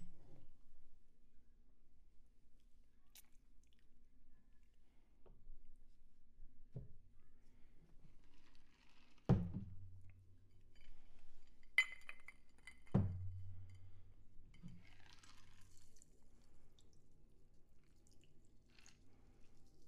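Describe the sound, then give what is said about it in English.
A cocktail is double strained into a glass: quiet trickling and dripping liquid, broken by a couple of sharp clinks and knocks of metal on glass, with no one talking. “All right, we're gonna double strain this cocktail into the glass.”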